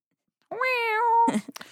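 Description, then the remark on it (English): A voice imitates a guitar whammy bar, a single sustained, slightly wavering nasal 'weee' that bends in pitch, followed by a few short breathy, clattery bursts. “That's like a cat, like wee. That's like my whammy bar noise.”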